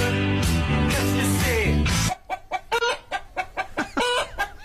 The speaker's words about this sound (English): Whoa. Chicken music. What's chicken music? Chicken music is like when chickens sing songs, like for.